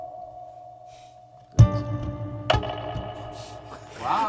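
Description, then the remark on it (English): A sustained electric guitar tone rings out through an amp with its reverb cranked all the way up and a second reverb also cranked up, then two sharp plucked notes strike about a second apart, each blooming into a long, washy reverb tail that lingers and smears. “So you crank that up, and then you take his bag's reverb, and you crank that guy up. Double reverb.”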